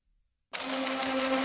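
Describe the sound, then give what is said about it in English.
A teletype machine starts up abruptly after a brief silence, then runs with a steady, loud mechanical whir and a constant low hum, unbroken to the end. No one speaks. “I think I hear the teletype right behind you.”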